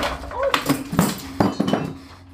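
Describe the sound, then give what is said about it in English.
A whole shelf is knocked over and a statue breaks: a quick series of sharp knocks, thuds and glassy clinks tumble over about two seconds, fairly loud, then fade to quiet. “But I knocked over my whole shelf and broke a statue, so rip.”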